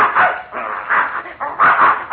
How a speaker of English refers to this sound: Well, I'll be darned, there's that mad dog Adolf. Look at that bear chasing him.